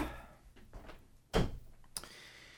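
A door swings shut with a solid thud, followed a moment later by a sharper click as it latches. No one speaks.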